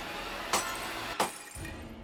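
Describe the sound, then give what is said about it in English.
Two sharp bursts of glass as vanity light bulbs around a mirror pop and shatter one after the other about half a second apart, each with a brief bright crackle over a low steady background. “The light in them surged until they burst, one by one.”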